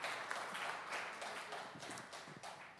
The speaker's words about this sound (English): Nothing is impossible with our God. It's who he is. And so, yeah, you can clap for that.